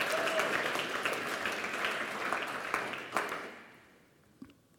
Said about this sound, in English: And I thought just before I began, maybe we could give another round of applause to our drama group. I really enjoyed it.